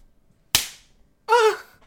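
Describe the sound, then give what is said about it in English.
A voice imitates a slap for the game Ghost Lines, a game about fighting ghosts on a train, with one sharp, loud crack that trails off quickly, followed about a second later by a short, strained vocal sound with a wavering pitch. “Make a slap noise.”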